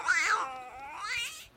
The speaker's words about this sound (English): At the end of that 60 seconds, you know your time's up because you'll hear the meow of a kitty.